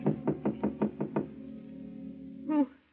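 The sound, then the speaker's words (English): Seven quick, evenly spaced knocks rap firmly on an apartment door at night, then a low lingering hum and a brief voice-like sound right at the end. “a knock at Gloria's apartment door”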